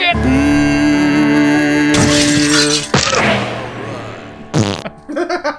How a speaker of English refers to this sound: I love how delayed the fart is. The delay in the fart is just perfect. The very end.